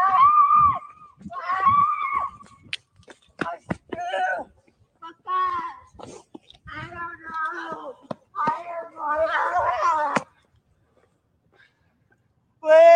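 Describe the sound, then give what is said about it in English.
A young child screams and wails in loud, repeated bursts over several seconds, with short gaps between cries, piercing, then falls silent near the end. “Where have we heard this scream before?”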